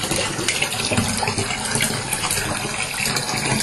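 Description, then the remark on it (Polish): Water pours steadily from a tap into a bathtub, a continuous loud rushing splash with a hollow, filling resonance that holds evenly throughout, with no voices. “Poczekam, aż woda naleci, wtedy będzie mnie lepiej słychać.”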